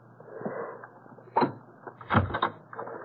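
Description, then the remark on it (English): A bolt scrapes back with a short metallic clack, followed by a heavier clunk and rattle as a door bolted from the inside is pulled open, with no voices. “Why was the door bolted from the inside?”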